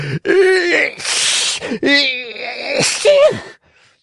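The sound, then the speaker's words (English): A man's voice acts out two loud, drawn-out sneezes in quick succession for the character Fire Eater in a reading of Pinocchio, each with a rising gasping build-up before the sharp, breathy burst, clear with no other sounds. “Two loud sneezes finished his speech.”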